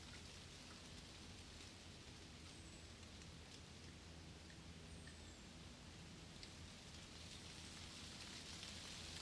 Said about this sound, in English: the sound of the rain on the wooden log cabin is comforting, peaceful, and helps you to rest more and more.